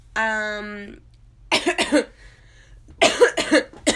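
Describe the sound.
A brief voiced hum gives way to two bursts of harsh coughing, a pair of hacks followed after a pause by a rougher run of three or four more.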